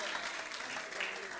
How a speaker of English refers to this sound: Why don't we clap our hands to the Lord?